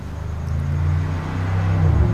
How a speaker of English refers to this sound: As a car screams past.